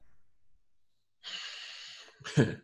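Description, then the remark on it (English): Two heavy, forceful breaths, a long harsh exhale followed by a shorter, sharper snorting huff, as someone mimics angry, agitated breathing. No talking. “Breathing that gives it away alongside, it's like,”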